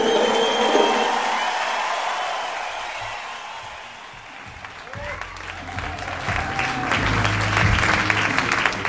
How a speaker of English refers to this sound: Thank you for the polite applause. How about a hand for all the dope stories y'all heard?